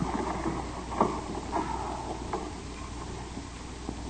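A rowboat moving on an artificial lake fed by dammed mountain streams: soft, periodic oar strokes dip and splash every second or so, with faint creaks over a steady low background hum. No one speaks.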